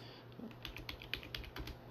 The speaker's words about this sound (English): Funny thing is, when I started typing in director, I put the letter D, and the first thing that came up was John Wick's dog.